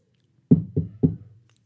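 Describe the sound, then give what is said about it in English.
Three firm knocks on the door of an apartment on the third floor in quick succession, fairly loud, each with a dull wooden thud and short decay, then quiet. “You're knocking the door on your own apartment here, bud.”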